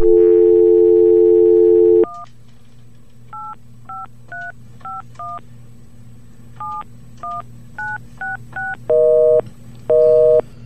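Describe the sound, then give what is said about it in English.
A steady dial tone for about two seconds, then a quick series of short touch-tone dialing beeps as a phone call is placed, each a paired tone, ending with two longer, louder tones; no one speaks. “We have to place this call.”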